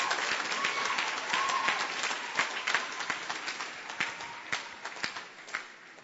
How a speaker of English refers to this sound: Why don't you give the Lord a wonderful clap of him?